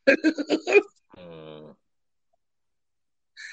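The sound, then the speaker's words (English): A rapid series of four or five coughs, then a longer, rough, voiced throat clearing. Both are fairly loud, followed by a short pause and a faint vocal sound at the end. “Oh yeah, I got this cough going on, everybody.”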